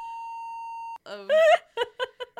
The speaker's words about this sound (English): I said my full legal name on the podcast. Can you bleep that, please? Would you like me to beep it out? Can you bleep that? Yes, I will.